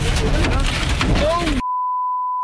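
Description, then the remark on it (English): Dense, roaring wind from a tornado batters a car during deadly storms in the South, with voices crying out beneath the din; partway through, a steady, high-pitched beep abruptly replaces the sound before the battering returns. “You can hear their car battered by the ferocious twister.”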